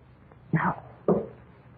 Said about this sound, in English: Listen. That knocking. How funny it sounds. Those kids. But it's from the basement door.